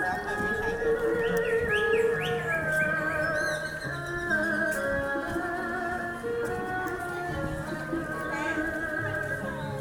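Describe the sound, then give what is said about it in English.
Birds chirping and singing in a large park with a lake in Shenzhen, with short high calls rising and falling over a steady, busy wash of outdoor sound with people walking by, fairly constant in loudness throughout. “I didn't realize that I was also recording the sounds of the birds in the park.”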